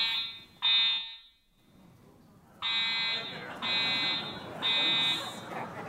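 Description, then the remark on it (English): A loud building fire alarm blares in repeated harsh electronic bursts during a seminar hosted by the Long Now Foundation, pausing briefly between tones, with faint room noise and murmuring voices underneath. “This event was cut a little short by a fire alarm in the building.”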